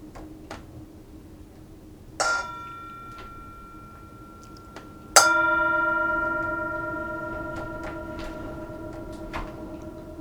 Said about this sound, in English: inviting the bell to sound and enjoying the sound of the bell, being present to each other as we record this, and hopefully you're present, mindful, as you're listening as well. And enjoy the sound of the wind today, too. Here's the bell.